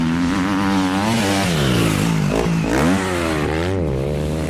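A motorcycle engine revs loudly, its pitch rising and falling in a couple of throttle swells over a steady growl, with no voices present.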